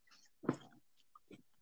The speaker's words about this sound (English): My dog's having a. My dog's having a tantrum.